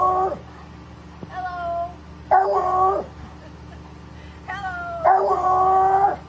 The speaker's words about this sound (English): Hello, dog. Yeah, dog's saying hello. He's cute. He's a good boy. What's up, dog?